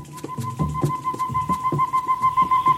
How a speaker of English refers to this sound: I like those birds. They were recorded in the Motto Grosso.